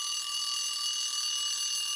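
An alarm clock rings steadily with a bright, high-pitched continuous tone, sustained and unbroken at a constant level for the whole moment, with no voices.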